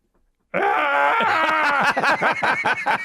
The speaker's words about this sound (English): They should have put that screaming goat in.